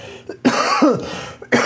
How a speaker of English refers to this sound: Sorry about all the coughing, people. Yeah, it's very distracting. I got more coughings than a... mortuary.